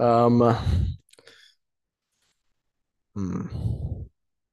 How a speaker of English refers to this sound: Man. All the heavy breathing. You can hear me like.